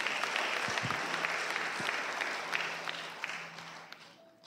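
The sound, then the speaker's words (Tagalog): An audience claps steadily during a sermon, a dense wash of many hands applauding together, holding fairly constant before easing slightly toward the end, with no voices standing out. “May na pumalakpak mga tao rito.”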